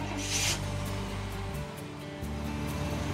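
A truck engine hums steadily up close, a low droning rumble with a brief hiss near the start and a slight drop in the low end midway, with no talking.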